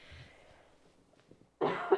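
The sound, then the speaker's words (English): A sudden, loud cough bursts out near the end after a stretch of quiet breathing and faint rustles, harsh, with a second forceful hack right after it. “See, it made me cough.”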